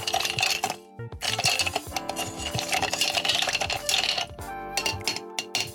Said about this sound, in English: And then you just get a spoon and a bar spoon, which is a long one, and stir it.